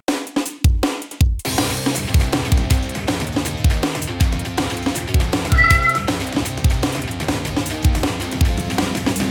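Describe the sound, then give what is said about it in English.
A cat named Harry Truman, a kitty drummer, meows along with an upbeat band track, its short rising cries sitting over steady drums and guitar that play loudly throughout without any talking. “kitty drummer Harry Truman”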